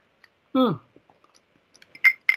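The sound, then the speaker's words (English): A short voiced murmur with a falling pitch, then a few faint mouth clicks and two quick, sharp slurping sips of a cocktail near the end, with no words spoken. “Let me just take a little sip today of my chosen cocktail du jour.”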